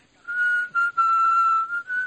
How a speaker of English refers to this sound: Who's whistling? Who's doing that?